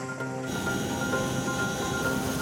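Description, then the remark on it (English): Chinook helicopters evacuating people from Jamestown: rotors thump in a loud, steady, churning roar with intense downwash, with a sustained engine whine layered over the low rumble and no voices. “It felt like we were in MASH with these big Chinook helicopters. They were so loud, the force of the winds coming off their prop was so intense.”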